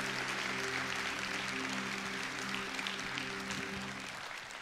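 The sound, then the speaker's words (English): An audience at FBC Jinx applauds the choir during a morning service with a dense, steady wash of clapping that holds for several seconds over a low sustained chord, easing off slightly at the end. “Well, if your heart has already been blessed so far, would you give that choir a round of applause this morning?”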